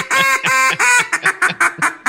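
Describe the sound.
A man imitates duck calls, loud quacking: three drawn-out nasal quacks followed by a quicker run of about seven short, clipped quacks in steady rhythm, with no talking.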